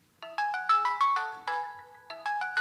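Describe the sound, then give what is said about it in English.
A melodic phone ringtone plays a quick sequence of bright electronic tones, clear, with no voices over it. “She's about to do this competition to get into the Olympics, and she gets this phone call.”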